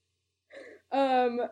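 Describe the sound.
A person imitates a gasp of surprise: a quick, breathy intake of air, then a drawn-out voiced exclamation, fairly loud, with no other talk around it.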